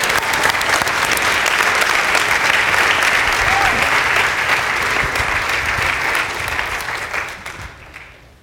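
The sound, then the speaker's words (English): Steady, loud audience applause welcoming a man up to give an update, with dense overlapping claps, holding strong for about seven seconds before tapering off and fading out at the end. “but let's just make him really uncomfortable right now and give him a big round of applause and welcome him up here.”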